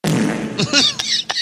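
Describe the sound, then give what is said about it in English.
A loud, low flatulent fart sound effect rumbles for about half a second, then trails into a sputtering, echoing reverb tail with a few sharp crackles that fade away. “Fart with reverb.”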